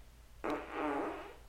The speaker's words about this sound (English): Oh, fart. It was a sound drop. Fart. Damn. Was that a sound drop? It was a sound drop. Yeah, that was a good sound drop.